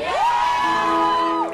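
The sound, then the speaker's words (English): A concert audience in 2000 lets out a loud, drawn-out cheering yell after being asked if they are having fun; it swells up, holds steady for over a second, then drops off, with a rough crowd wash beneath the dominant voices. “Just listening to you guys yell about having fun.”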